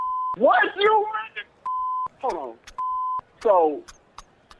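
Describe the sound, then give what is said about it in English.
Airport-style background: three flat electronic beeps alternate with short bursts of a garbled announcement voice, all fairly loud and in a steady back-and-forth pattern. “Okay, if you pranking me, what's up with the airport stuff in the back then? Y'all at the airport?”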